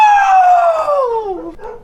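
A single long dog howl, loud, sliding slowly downward in pitch for over a second before a brief trailing yelp; no barking or talking is heard.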